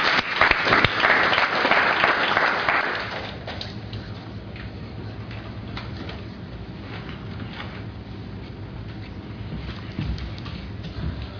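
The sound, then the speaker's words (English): A church audience bursts into loud applause for about three seconds after a member's apology during a service. The clapping then thins out into scattered, softer claps and murmur that linger to the end. “You can clap.”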